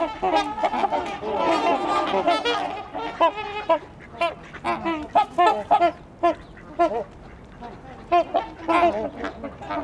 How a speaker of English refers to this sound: So you can hear some quacking too, if not one.